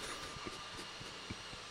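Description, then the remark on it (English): A robot vacuum cleaner that has just switched on hums with a steady, airy whir, punctuated by soft irregular knocks and clicks as it moves about. It sounds fairly quiet, with no voices. “We've got a kind of a portable or an automatic Hoover and it's just come on.”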